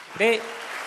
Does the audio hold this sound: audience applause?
yes